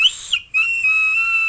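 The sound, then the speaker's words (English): A thin, steady high-pitched whistle of air drawn through the airflow of a vape fitted with a staggered fused Clapton coil, briefly breaking off then resuming and holding as a sustained tone, fairly loud with no talking. “Now, the only thing I've noticed so far that's weird is the airflow, it whistles.”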